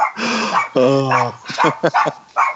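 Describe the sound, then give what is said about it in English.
A dog barks loudly and frantically at a person walking by, a long drawn-out bark followed by a rapid string of sharp yelps and barks, continuous for the whole stretch. “As you can hear, some dog is freaking out that I'm walking by.”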